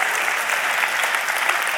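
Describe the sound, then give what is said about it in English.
A crowd applauds steadily, a dense wash of many hands clapping at once, fairly loud and even throughout with no voices standing out. “You can clap at that too, I guess.”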